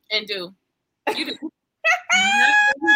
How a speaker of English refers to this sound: We're not still including the cough, are we?